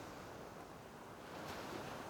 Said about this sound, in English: And you walk to the shore, and you feel the golden sand on your bare feet. And you walk to the sea, and you stand there, and the gentle waves wash over your feet.